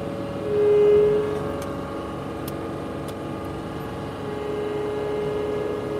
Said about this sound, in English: And where's my horn? Two more horn honks for you.